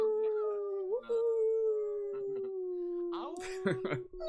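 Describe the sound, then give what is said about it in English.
People on a call unmute their microphones and howl like wolves in a long, steady, sustained wail, with other voices layered in and a burst of excited cheering and shouting near the end, loud over the call line. “I can hear the live chat howling as well.”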